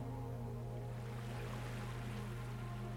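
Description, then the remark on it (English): Steady wash of ocean surf rolling onto the shore, a continuous soft roar with no talking, layered over a low sustained hum. “You hear them crashing onto the shore.”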